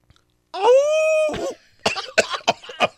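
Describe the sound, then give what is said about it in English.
A voice imitates a wolf howl, attempting an Australian-style howl: one short, rising, sustained tonal call lasting about a second, then a string of harsh, choppy coughs. “What should it sound like? Need that animal was, sound that training.”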